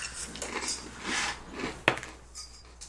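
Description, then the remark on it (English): Dice rolled for an arcana check clatter onto a hard tabletop, with soft rattling followed by one sharp, bright clack that quickly fades, then near-quiet with faint background hiss. “Come on, fucking dice.”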